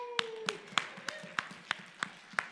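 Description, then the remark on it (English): Applause in a church for the high schoolers present, in the form of steady, evenly spaced hand claps, about eight sharp beats in a brisk rhythm, fairly quiet, with a faint sustained tone underneath and no talking. “So if you're in high school, can we take a moment to give you an applause?”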